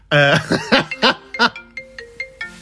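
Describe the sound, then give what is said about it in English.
A mobile phone rings as a mother calls, with a melodic electronic ringtone: a loud, buzzy opening note followed by a quick run of shorter bright tones, clear with no talking. “Why does my mum always call me during recording of this podcast?”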